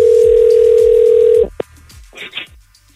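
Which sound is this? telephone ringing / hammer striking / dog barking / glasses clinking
telephone ringing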